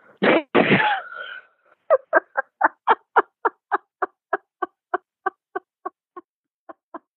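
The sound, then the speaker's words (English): A voice imitates the cough of a man standing with a cigarette in his mouth: a harsh, throaty hack, then a long run of about twenty short, raspy wheezing coughs in steady rhythm that gradually weaken. “He went, he would, you know, stand and cough and squint one eye.”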